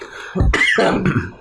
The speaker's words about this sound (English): But look, you're coughing, but I feel. Oh, I might be speaking too soon, but I feel like you did that better than me.